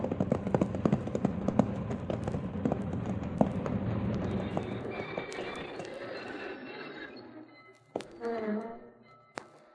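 Horse hooves clip-clop in a steady rhythm over a low rumbling background, then fade away; a brief voice is heard near the end.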